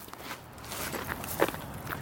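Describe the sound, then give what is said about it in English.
Footsteps walking at a steady pace in El Paso, Texas, toward the opening of a tunnel, a series of soft, irregular crunching steps over a low, continuous background noise, with one sharper scuff standing out midway. “So we're walking over here and we'll see the opening of the tunnel.”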